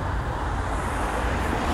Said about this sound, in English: you will have, at any given time, you will have, oh, here comes a nice car.